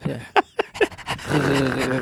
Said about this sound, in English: What was that? Was that a dog sneeze?